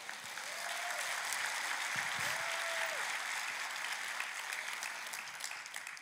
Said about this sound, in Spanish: Ay, dale un aplauso.